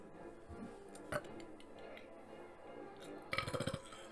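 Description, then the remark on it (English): A short, small burp near the end, a low rattling gurgle of quick pulses lasting about half a second, preceded by a faint clink over a steady low background hum. “Oh, that was a small burp.”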